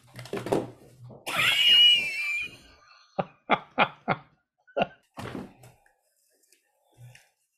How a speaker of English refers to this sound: Because I hear that it's going on in the background. Hang on. Here's. Sorry about that. I don't like to complain. Well, let me close that door.